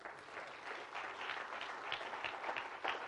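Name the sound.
audience clapping hands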